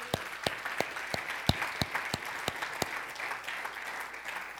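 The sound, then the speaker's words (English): An audience gives God a round of applause, with a dense wash of clapping punctuated by sharp, steady, rhythmic claps roughly three per second, sustained throughout at moderate loudness. “Y'all take 5 seconds and give God another round of applause.”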